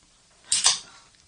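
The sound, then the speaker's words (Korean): Beer cans cracking open at the start of a year-end broadcast: two sharp metallic snaps in quick succession, followed by a short, bright fizzing hiss that fades within half a second. No one speaks. “경쾌하게 따면서 시작하겠습니다.”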